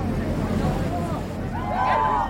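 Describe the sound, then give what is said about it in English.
A steady engine rumble and rushing water from a boat underway at sea, with a crowd of passengers gathered on the boat's left (port) side chattering and calling out as they watch dolphins jumping out of the water, continuous. “So out on sea now, we have some dolphins putting on a show for us.”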